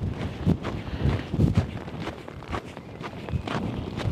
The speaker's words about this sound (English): And now that it's cold and windy, they've got their flippers stuck down by their side.